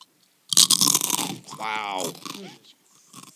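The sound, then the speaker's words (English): A loud crunch of a woman biting into a crisp potato chip taken from a penguin bag, a burst of crackling lasting about a second, followed by a short voiced murmur and quieter chewing. “And she is going to go ahead and take a bite of her chips.”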